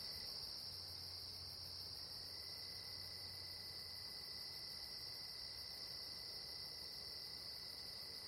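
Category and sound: insect, night insects chirping outdoors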